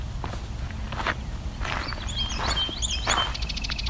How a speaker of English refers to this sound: There's a song sparrow.